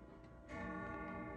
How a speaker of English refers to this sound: There goes the clock.